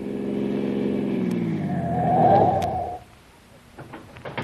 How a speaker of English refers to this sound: Car behind is coming fast.